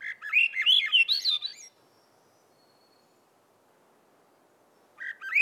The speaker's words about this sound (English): She's caught songs that are emblematic of summer in the North Woods, like the Swainson's thrush.